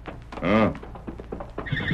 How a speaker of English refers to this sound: Did you hear that horse, Kima?